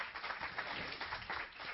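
An audience claps together in a dense, steady burst of applause, many hands overlapping into a continuous crackling wash that holds at an even loudness throughout.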